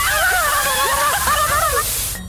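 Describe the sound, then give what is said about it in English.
A steady hiss of water spraying from a hose as someone hoses out nooks and crannies, overlaid with warbling, wavering tonal squeals, running for about two seconds before stopping abruptly. “Fine, I'll hose out your nooks and crannies!”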